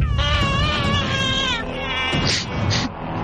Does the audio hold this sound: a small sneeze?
no